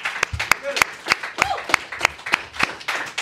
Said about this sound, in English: All right, let's clap it up for it.